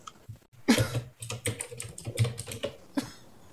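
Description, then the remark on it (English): Rapid, irregular clatter of fingers typing on a computer keyboard while searching online, fairly loud, with uneven bursts of keystrokes and short pauses, no voices. “Are you typing away? That was me. I was trying to find what I was referencing.”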